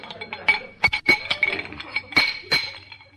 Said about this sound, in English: These pipes must be feeder pipes. Feel a little loose. Oh, here's a wrench. We'll tighten them up.